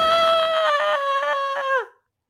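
A single sustained, high-pitched scream from one person, loud and close, holding steady for nearly two seconds before sliding down and cutting off abruptly, with no talking.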